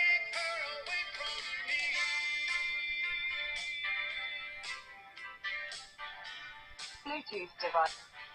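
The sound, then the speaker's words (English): A small Bluetooth speaker being switched on plays its electronic power-on chime: a bright, melodic run of synthesized tones lasting several seconds, then choppier bursts near the end. “Now I'm going to turn on this little guy here.”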